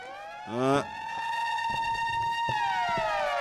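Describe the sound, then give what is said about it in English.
A loud emergency siren wails steadily, its pitch sliding slowly downward, preceded by a brief rising whoop at the start. No one is speaking. “All right, let's get this siren in here.”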